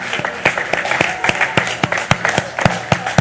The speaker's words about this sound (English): Instead of being a spectator at this moment, go ahead and be a celebrator. Go ahead and clap your hands for what God is doing.